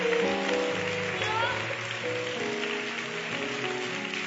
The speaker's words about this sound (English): I'm done. Give me a hand clap. Can you do that?